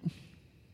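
A single short sneeze bursts out at the very start, a quick breathy blast that fades fast into quiet, faint background noise with no one talking.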